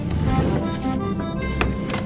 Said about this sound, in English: Oh, here, let me pull out the chair for you.